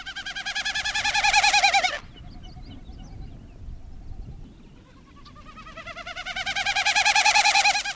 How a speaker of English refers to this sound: The male Wilson's snipe creates a magical flute-like sound in flight, fluttering its wings to direct the flow of air over outspread tail feathers.